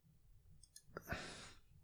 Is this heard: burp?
no